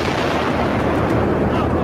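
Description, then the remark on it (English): A loud, sustained rumbling roar of explosion noise fills the whole moment, dense and heavy without any clear pause or separate blasts. “You heard explosions.”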